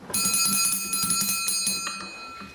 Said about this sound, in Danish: For når formand for Inatsisartut, Vivian Motzfeldt, ringer på klokken, så betyder det, at samling er startet.